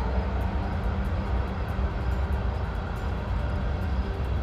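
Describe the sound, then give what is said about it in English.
A steady, heavy rumble of a train rolling past, deep and continuous with a faint rattling texture, holding an even loudness throughout with no voices. “It's funny because we're already used to the train, and sometimes on the days where it doesn't come, we're like, hey, oh, I haven't heard the train today.”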